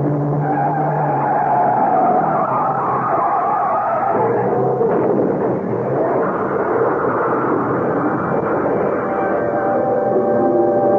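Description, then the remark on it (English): Tires skid and screech loudly and continuously for about eleven seconds, with a harsh burst midway as a trailer truck coming up on the right slams into a car that was cutting in and out of lanes in fairly heavy traffic, engine roar underneath, no voices. “I saw the look on the face of the driver of a trailer truck he cut off and opened my mouth to warn him, but I was just a second too late as the truck came zooming up on our right.”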